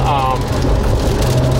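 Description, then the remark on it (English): Heavy rain from a downpour drums steadily on the canvas roof of a Porsche being driven, a dense, loud hiss over a low engine and road rumble, with a brief tonal sound at the start. “So I'm driving through a downpour right now.”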